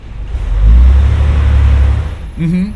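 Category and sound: vehicle, bus engine revving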